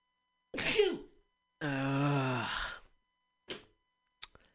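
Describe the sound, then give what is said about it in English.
A sharp sneeze bursts out, followed by a drawn-out voiced groan and a couple of short sniffs or breaths trailing off. “If only it were as easy to get rid of a corrupt officer as it was to sneeze.”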